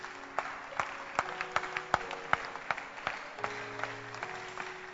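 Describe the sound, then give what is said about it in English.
An audience claps hands together in a steady, even rhythm, roughly two claps per second, at the close of a church service, over soft sustained musical tones with no voices. “Keep clapping your hands as we close.”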